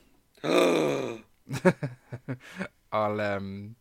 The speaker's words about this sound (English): You can gasp again.